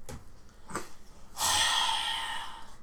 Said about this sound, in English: Heavy breathing.